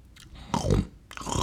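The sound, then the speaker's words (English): Loud chewing with wet, crunchy mouth sounds, joined by a heavy nasal breath; two bursts of mastication separated by a brief pause, with no speech. “Is that how you chew?”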